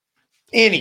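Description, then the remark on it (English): A female dog lets out a short whimper, a single whiny vocal sound of under half a second that rises out of silence and fades quickly. “That's your dog again.”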